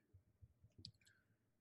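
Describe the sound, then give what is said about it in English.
Soft, quick keyboard typing, a handful of muffled keystrokes and light clicks tapping out an uneven rhythm, quiet with no voices. “We can hear you typing.”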